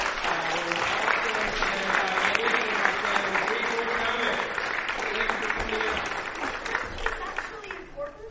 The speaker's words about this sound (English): So we have a big round of applause for our panelists.